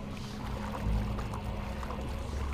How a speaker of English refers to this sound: We're actually swimming in the water, so who knows what we are awakening.